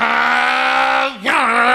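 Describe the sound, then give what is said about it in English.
A voice imitates the engine roar of a Porsche GT3 racing car being driven: a loud, buzzy, sustained drone held at one pitch, then a brief dip and rising rev before settling back into the steady growl. “Porsche is so loud. It's a GT3. It's one of those racing cars.”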